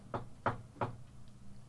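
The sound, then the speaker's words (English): Three evenly spaced, firm knocks on a solid cell door, with a faint low hum filling the quiet afterward. “And a little bit after that, there is a knock at your cell door.”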